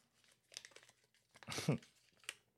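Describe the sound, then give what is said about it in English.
Quiet crinkling of a folded paper slip, drawn to pick a topic, being handled and unfolded, with a few soft rustles and one louder crackling burst in the middle as the slip is opened up. “Why did I unfold the paper?”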